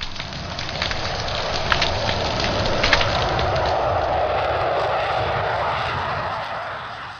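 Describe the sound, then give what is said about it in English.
A dense, continuous crackle of snapping shrimp fills the underwater scene, countless tiny pops and clicks merging into a steady fizzing hiss with a few sharper snaps standing out. “Extremely loud at the scale of a small shrimp.”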